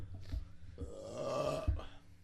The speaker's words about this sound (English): Bro, I don't drink soda that much, so I'm burping a fuck ton.